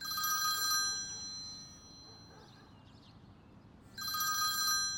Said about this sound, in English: Of course, as I decided to lie down, the phone rang.